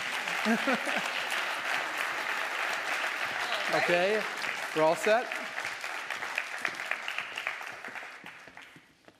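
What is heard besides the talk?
round of applause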